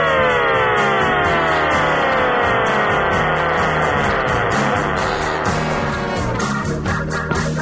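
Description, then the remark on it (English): A siren wails steadily, its rising and falling tone sweeping continuously and fairly loud throughout, with a low rumbling engine-like drone underneath and no voices. “Gentle sirens.”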